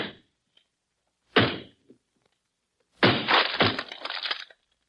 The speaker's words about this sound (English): Well, if somebody needed help badly enough to spell it out in cordwood, they need it badly enough for me to break down this door. Look out, honey.